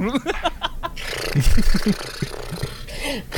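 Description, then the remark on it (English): A voice imitates the whirring, rumbling spin of the big round brushes of an automatic car wash, producing a steady run of breathy whooshes and low rhythmic throaty pulses, fairly loud. “I like to imagine like it's an automatic car it's wash. Poop. You go to bed and like the big round brushes are just going”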